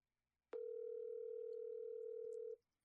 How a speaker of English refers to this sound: Nah, I'll just put him on speakerphone. You hear the ringing? Yeah. All right. Cool.